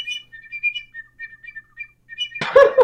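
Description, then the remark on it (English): A straw whistle blown in a string of short, thin, chirpy tones that wobble in pitch, moderately loud, ending with a sudden harsh, noisy blast. “Why the straw whistle?”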